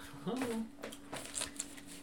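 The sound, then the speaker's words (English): Christmas gift wrapping paper crinkles and rustles in short bursts as it is carefully peeled open rather than ripped, revealing a JoJo's Part Three book, following a brief vocal exclamation at the start. “Hey, you're supposed to rip it.”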